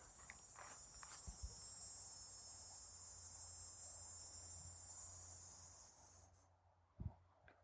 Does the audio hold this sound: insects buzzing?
yes